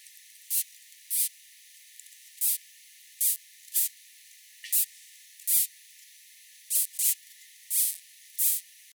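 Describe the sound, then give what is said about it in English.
Stridulation of another morph of the ant species Pachycondyla apicalis, made with its stridulatory file: about a dozen short, high, hissy rasps in an irregular series. Some come in quick pairs, with a faint steady hiss between them and no voices. “And here, for contrast, is the sound made by another morph of the species.”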